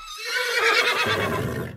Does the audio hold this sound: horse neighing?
yes